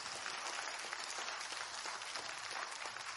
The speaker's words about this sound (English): Let's give God a hand clap of praise for diversity.